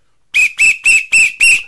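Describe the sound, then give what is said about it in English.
Five loud, shrill whistle blasts in quick, even succession, each short and piercing, with no talking over them. “My God, put away your rape whistle, please.”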